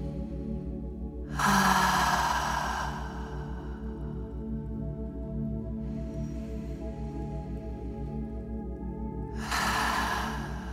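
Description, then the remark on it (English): Three slow, deep breaths taken during a meditation, each inhaled through the nose and exhaled through the mouth, a drawn-out airy rush lasting a second or two, over a soft, steady droning music bed with no talking. “And let's take 3 deep, full, long breaths together, inhaling through the nose, exhaling through the mouth.”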